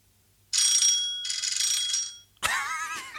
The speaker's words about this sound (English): All close fights. This one ain't, but I will press the bell noise.